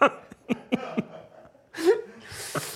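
human body sound, sneeze

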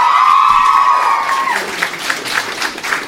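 crowd, audience applause and cheering

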